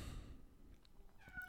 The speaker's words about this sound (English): Oh, there's my cat. That's Olive.